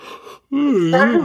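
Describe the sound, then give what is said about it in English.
A person yawns: a short breathy intake, a brief pause, then a long, loud voiced groan that wavers in pitch before trailing off. “I keep yawning.”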